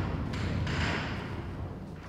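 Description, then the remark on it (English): An observatory dome roof rumbling open on a nice day, opening a small slit in the dome: a steady, heavy low-pitched mechanical rumble with a grinding, scraping edge, continuous and fairly loud for about two seconds, with no voices. “Yes, that sort of rumbling sound.”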